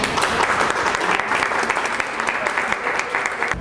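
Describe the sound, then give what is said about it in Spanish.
A crowd claps steadily, a dense, continuous wash of applause holding an even level throughout without any talking over it, at an inauguration at the Centro Cultural José Martí, applauding director María Eugenia Mondragón. “A nombre de la directora María Eugenia Mondragón, para quien pido un caluroso aplauso.”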